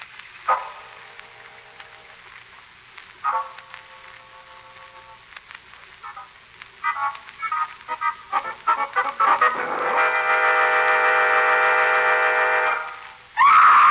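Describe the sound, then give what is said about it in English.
A woman in the woods screams in a series of short cries that build into a long, loud, sustained scream, ending with a sharp high shriek, all over a steady background hum. “Lamont, that scream.”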